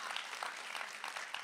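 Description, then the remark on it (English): A church audience claps together to thank Jesus, many hands blending into a dense, steady wash of applause that holds at an even level for the whole moment, with no voices standing out. “But if I don't got Jesus, come on, clap today and thank him.”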